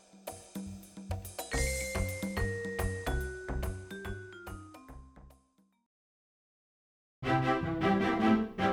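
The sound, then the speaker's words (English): Bells ring out at dawn, a descending run of bright, sustained tones over a steady low pulse, fading to silence before another loud burst of ringing and clanging picks up. “It's a new dawn in Neudrakenberg, and the bells are ringing.”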